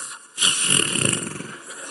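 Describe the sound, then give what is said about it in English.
A voice imitates snoring with one drawn-out, rattling snore that starts abruptly and rumbles on at a fairly loud level before trailing off. “Snoring.”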